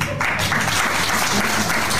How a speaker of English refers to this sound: I think they're applauding that he's leaving the stage.